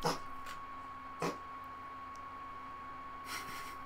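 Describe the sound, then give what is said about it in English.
A cat retching under a bed, three or four short, faint heaving bursts spaced irregularly, over a steady low electrical hum with no one talking. “Cat's barfing.”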